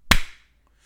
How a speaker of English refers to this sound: Should we start with a clap and be pros about this shit? Yep. 3, 2, 1.